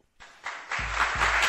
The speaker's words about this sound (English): Adam Schefter, ladies and gentlemen. Let's give him a roaring round of applause, shall we?